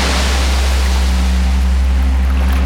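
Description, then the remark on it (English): A steady, loud wash of surf rolls continuously with a deep, rumbling low end, water roaring without pause or distinct breaks, and no voices present. “All along, the waves kept pushing further up the shores, until one day they woke from their sleep and the waves blocked out the sun, and there was no ignoring them anymore.”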